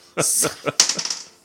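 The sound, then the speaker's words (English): Dice clatter across a tabletop as players roll initiative, in a quick burst of sharp clicks and rattles that tumble and settle within about a second, with voices murmuring around them. “Everybody roll initiative.”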